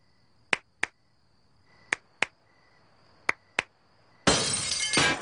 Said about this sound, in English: I love that it waits, it pans outside, and then you get a couple of extra claps, and then he throws it out.